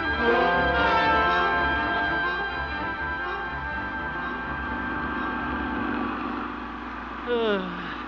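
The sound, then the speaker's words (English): Old man Walker's tractor, taking up the whole street, runs at a steady idle: a low droning chug layered with buzzing harmonics. It holds at a moderate level throughout, with a brief swell in pitch and volume near the end. “Old man Walker and his tractor up there, taking up the whole street.”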